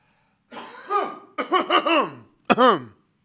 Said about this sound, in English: Let me clear my throat.